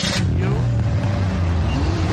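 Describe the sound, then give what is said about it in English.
A car engine revs loudly, its deep droning rumble climbing in pitch and holding steady for a couple of seconds with no pause. “I got the car gassed up.”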